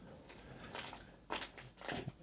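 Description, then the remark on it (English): A dog at a dog pound rips apart a packet of food, crunching and chewing with a handful of irregular, crackly bites spread across a couple of seconds at fairly low volume, no voices. “The two of the dogs make so much noise together. One's ripping a packet of food apart and the other one's drinking.”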